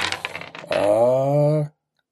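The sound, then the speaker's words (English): A quick burst of dice clattering and tumbling across a hard tabletop during a tabletop game, landing tilted, lasting under a second, followed by a steady, drawn-out droning tone that stops abruptly. “I'll call that a tilt. Don't roll that thing. Okay. Well, it's dice.”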